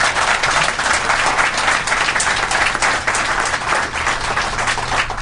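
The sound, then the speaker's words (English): A crowd applauds steadily, many hands clapping in a dense, even wash of sound that holds at a fairly loud level throughout without pause. The audience at a Cato Institute event applauds John Githongo. “He's one courageous man, and I'd like us to applaud him.”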